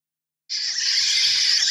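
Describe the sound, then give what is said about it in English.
A sudden burst of dense, high-pitched screeching, like a swarm of birds, starts abruptly and holds steady and loud with no talking. “Are they the bats again? Sounds like a the bats. Swarm of birds.”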